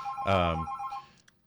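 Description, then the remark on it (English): A telephone on the emergency line rings once in a short, fairly loud electronic burst with steady tonal pitches, followed by a couple of faint, brief chirps as the tone fades. “I think there's a phone call.”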